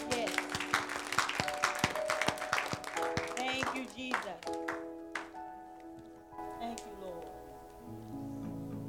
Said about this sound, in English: Clap for Jesus.